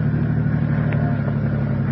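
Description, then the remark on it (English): A car pulls up to a newsstand by a subway entrance, across from the Bonner Building. Its engine runs with a steady, deep rumble and even loudness throughout, a low idling drone with a faint higher whine briefly rising over it. “Pull up to the stand.”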